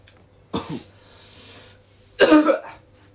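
A person coughs hard, two harsh bursts separated by a raspy intake of breath, the second cough louder and rougher than the first, with no talking.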